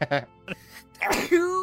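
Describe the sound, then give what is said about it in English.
A single sneeze bursts out after a few short breathy vocal sounds, ending in a brief voiced trailing tone. “Bless you. You're blessed.”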